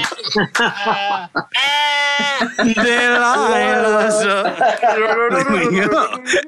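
Sheep bleats strung together to follow a song melody: a run of loud, quavering notes, some short and some long and sustained, rising and falling like a sung tune.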